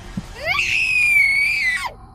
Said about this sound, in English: My blood froze and my energy returned to my body, but not to escape or fight. I could only scream.